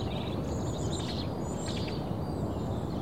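Birds chirp and trill in quick bursts over a steady, loud rushing noise, used as bird song to censor a spoken remark, with no one speaking, lasting about three seconds.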